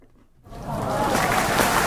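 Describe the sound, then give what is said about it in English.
A canned applause sound effect played on the Craft Beer Radio pre-show kicks in after a brief pause, quickly swelling into a dense, steady wash of crowd clapping that stays loud to the end. “Let me see if I can get some applause sounds.”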